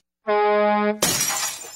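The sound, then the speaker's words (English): A steady, horn-like tone holds for under a second, then cuts into a sudden loud crash of a semi truck's windshield glass shattering, with bright crackling debris fading briefly. No one speaks. “The windshield on my semi is broken.”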